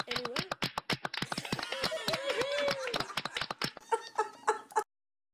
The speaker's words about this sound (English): Love that because it doesn't sound like clapping. No, that's actually, like, the worst sound effects ever.